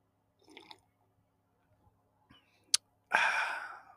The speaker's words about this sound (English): And as I take a sip of coffee, think about that.